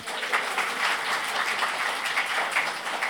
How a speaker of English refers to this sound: No, Caesar just declined it again. Okay. And the people applaud.